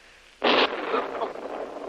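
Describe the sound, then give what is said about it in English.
A heavy explosion not far away: a sudden loud blast that bursts out of near-silence, then breaks into a long, rumbling, crackling roar that slowly fades. No one speaks. “That was a heavy explosion.”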